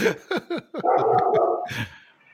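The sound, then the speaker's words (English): A dog barks several times in quick succession, fairly loud, then lets out a longer drawn-out yowl before a final rough burst fades away. “hey, does she have a dog by chance?”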